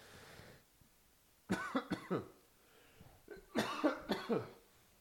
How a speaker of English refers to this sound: Pardon me if I forget to edit out those coughs. It's one of those times of the year.